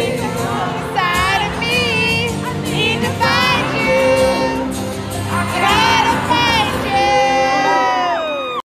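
A loud crowd of young voices shrieks and sings along in high, wavering pitches, filling the space continuously with overlapping cheers and sustained screams, like an audience at a live concert.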